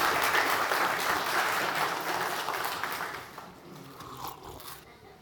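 A crowd applauds a man who helped with a slapping demonstration, with dense, steady clapping that gradually thins and fades over about five seconds, with a few scattered claps trailing at the end.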